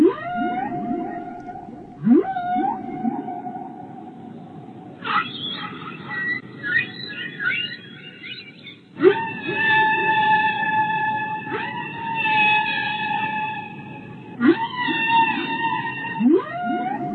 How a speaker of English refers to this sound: So instead, we are going to be playing you 20 minutes of Whale Song.